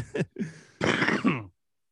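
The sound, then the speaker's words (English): A harsh cough in several bursts: a couple of short rasping hacks, then a longer, heavier chesty cough that trails off, with no talking over it. “That was a COVID cough, everybody.”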